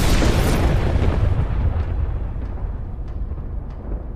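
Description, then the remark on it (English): An arc flash from an uninsulated high-voltage power line coming too close to a tree: a loud, rumbling roar of noise that slowly eases off, punctuated by sharp crackling snaps recurring roughly every half second. No voices. “That's an arc flash, or looks like a lightning bolt, basically.”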